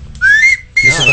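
A novelty whistle from a box of horns, whistles and bells toots twice: a bright, rising slide that holds a steady high note, a short gap, then a second shrill blast with a breathy, rattling edge.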